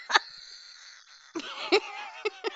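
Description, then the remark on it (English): A human voice imitates a golden conure parrot's shrill calls: a sharp squawk, a long nasal screech, then a few short choppy squawks, fairly loud. “I'm doing it as a golden conure.”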